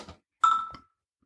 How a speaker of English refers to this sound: Well, a lot of things just happened there. Yep. There was some sort of Slack notification.